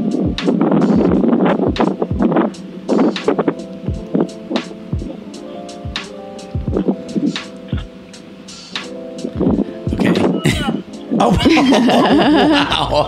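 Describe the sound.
Strong wind buffets the microphone of a video recording, giving a constant low rumble broken by loud, gusty thumps and crackles, while people talk through it.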